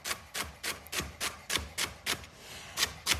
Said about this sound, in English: And we want pretty small pieces here. We have two celery stalks. Okay, so you want to just run your knife through it so that it's pretty small.